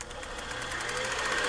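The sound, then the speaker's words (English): A steady mechanical whirring and rapid clattering, like an old film projector running, with a fast even rhythm of ticks over a constant hum that slowly grows slightly louder. “Let's get the old projector out.”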